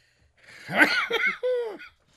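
A few harsh, breathy coughs burst out, followed by a short voiced, wavering sound as the fit trails off. No talking.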